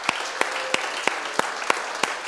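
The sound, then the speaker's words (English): An audience applauds, clapping for God to thank Him, with a steady rhythmic clap landing about three times a second over a dense wash of scattered clapping. The sharp beats stand out clearly above the constant noisy bed. “So I'll ask us, all of us, if we can just clap for God, just to thank Him.”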